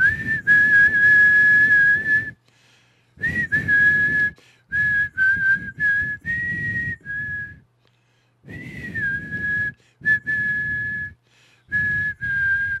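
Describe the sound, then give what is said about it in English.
A person whistles a sustained, wavering song melody in several long phrases separated by short pauses, fairly loud, with audible breathy air behind the tone. “I had to make sure I could actually whistle.”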